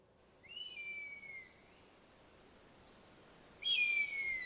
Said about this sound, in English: It's an eagle. Screech. Mm-hmm. Classic screech. Yeah. Eagle sounds. Sounds like fucking America.